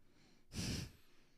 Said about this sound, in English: Do your nose breathing for us. Feels so good to get out my nose breathing. Oh my God, it's like you have clear sinus passages.